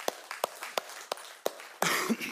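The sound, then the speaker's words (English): An audience at Stone Point claps for its weekend attendance reaching over 720 people: a handful of sharp, separate claps at a steady pace, then a short burst of fuller, overlapping clapping toward the end. “You can clap for that, okay?”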